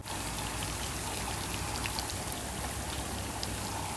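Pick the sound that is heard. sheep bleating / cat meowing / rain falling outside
rain falling outside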